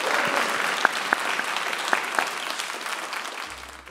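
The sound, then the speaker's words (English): An audience claps steadily in a dense, sustained round of applause for authors Paige Clark and Tony Birch at the close of a book talk, with a few sharper individual claps standing out before the sound thins toward the end. “A big round of applause.”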